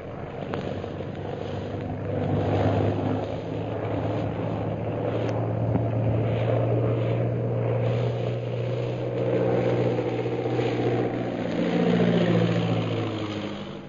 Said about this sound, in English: A few hours later, the plane piloted by Derek Bluger roars in from the hill. Lin Fu and Shanghai Lil watch it circle for a landing.